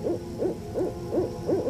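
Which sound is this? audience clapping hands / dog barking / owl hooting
owl hooting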